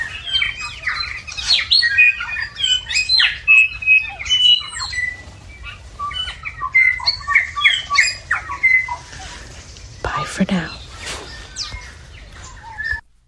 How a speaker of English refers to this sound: In the background, you can hear the dawn chorus. We have the loudest birds are the bellbirds, followed by the stitch birds and the tui and some whitehead. Take a listen.